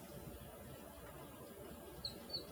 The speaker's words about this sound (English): The birds are singing.